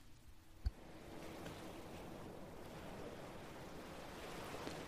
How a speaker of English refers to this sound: So now we're going to listen to the ocean from the seashore. Can you hear it?